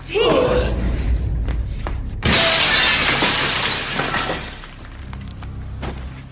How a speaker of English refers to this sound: The assassin, instead of waiting around, crashes through the apartment window and kills himself.